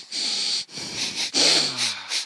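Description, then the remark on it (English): A series of airy sniffs at a cup of sour beer, about five quick inhalations in a row, each a breathy rush of air through the nose with brief pauses between, no talking. “Now that I've gone through the 20 sniffs, it's time to put this thing in my mouth.”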